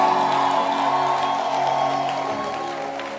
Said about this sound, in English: And I want us to clap our hands for the Healing Jesus campaign.